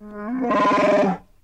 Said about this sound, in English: Now, just in case you have forgotten what Chewbacca sounded like, we can refresh your memory. Here is Chewbacca.